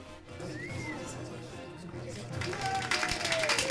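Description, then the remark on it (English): A crowd applauds, the scattered clapping thickening and growing louder toward the end, with a busy murmur of voices underneath. “There they go again. The crowd's here.”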